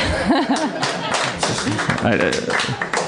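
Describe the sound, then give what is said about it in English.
Scattered, uneven hand clapping from a few people runs throughout, mixed with chuckling and laughing voices over a steady background murmur. “And hold for applause.”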